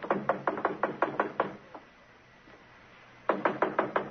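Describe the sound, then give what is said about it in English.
Police knock on a wooden door in a rapid series of firm knocks, a pause of quiet, then another quick burst of loud knocking. “open up. It's the police.”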